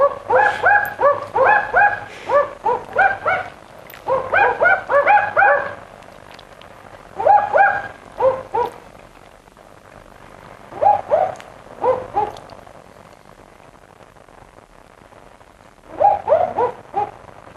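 Barking owls, a male and a female, call back and forth in a duet, repeating sharp doglike double "wook-wook" barks in bursts, one voice deeper and one higher, loud against a quiet night background; recording sent in by Greg Flint.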